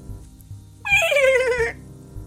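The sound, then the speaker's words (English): A voice imitates a horse with a single high, wavering, dolphin-like squeal lasting under a second, loud over soft, steady low thumps in the background. “That was the horse agreeing in a very dolphin-like sound, apparently.”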